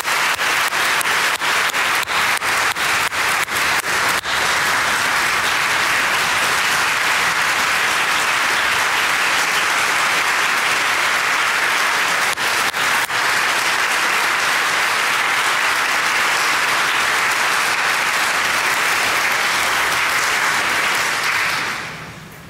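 Sustained applause from a large audience at a church community gathering, loud and steady for about twenty seconds with some sharper individual claps early on, then tapering off at the end.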